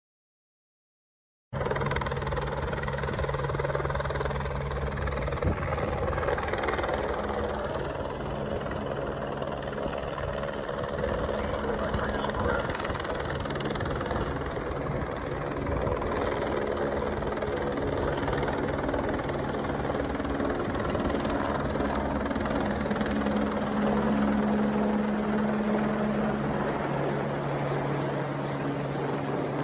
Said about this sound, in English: helicopters, Department of Homeland Security and Border Control helicopters, literally flying at extremely low levels to try and clear away the water protectors.